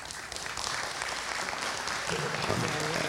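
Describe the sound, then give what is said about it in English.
An audience claps steadily, a dense wash of many hands applauding at a fairly loud, even level for a few seconds, with faint murmuring voices mixed underneath. “Hand clap.”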